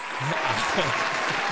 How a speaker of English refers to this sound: Why do it for real when you can have a virtual hand clap?